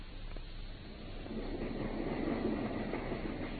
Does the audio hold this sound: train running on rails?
yes